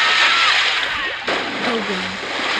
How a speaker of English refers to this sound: Oh, God. Oh, no! Lava shower!